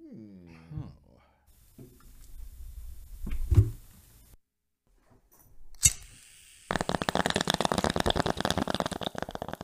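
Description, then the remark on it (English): A glass clink and low rumbling give way to a steady, rapid run of gurgling bubbles from a water bong, fairly loud and continuous. A brief voice sounds at the start. “I'm trying to give you guys some bong ASMR.”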